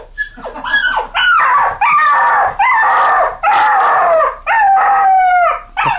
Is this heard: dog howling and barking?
yes